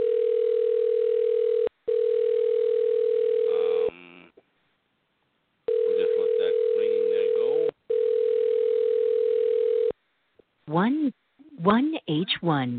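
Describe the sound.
A phone line's ringing tone sounds loud, four long steady buzzing tones in two pairs with brief breaks, a voice talking over parts of it before someone speaks at the end.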